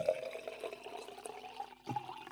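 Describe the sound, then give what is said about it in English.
Water pours steadily with a bubbling, trickling texture, breaks off briefly, then resumes with drips and splashes. Fairly quiet, with no voices. “My real life cannot equal that water sound.”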